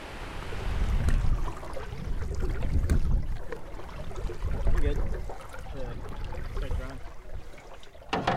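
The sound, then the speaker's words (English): River water laps and trickles steadily around a boat floating down the Chippewa River in the middle of town, even with the confluence of the Eau Claire River and the Chippewa River, below the Dells Pond Dam: a continuous wash with small splashes and knocks over a low rumble. “All right, so we are floating down the Chippewa River right in the middle of town, pretty much even with the confluence of the Eau Claire River and the Chippewa River.”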